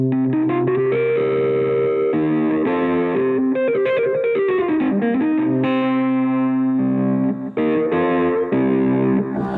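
Electric guitar through a RAT distortion pedal plays a gritty, sustained riff with held notes and bending pitches, loud, continuous for the whole stretch with only a brief dip near the end.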